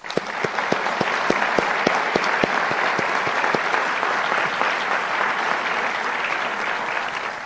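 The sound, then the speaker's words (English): An audience at the SUNY New Paltz Distinguished Speaker Series applauds the event's sponsors, dense clapping with a few sharp individual claps standing out early on, holding at a fairly even loudness for several seconds. “And let's please give a round of applause to all of these sponsors.”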